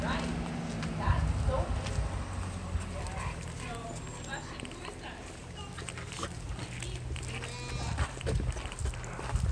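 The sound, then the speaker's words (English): Outdoor farmyard sounds of two sheep from a local farm and other livestock, with shuffling and hoof-like clopping over a steady low rumble and indistinct voices in the background. “Two sheep from a local farm.”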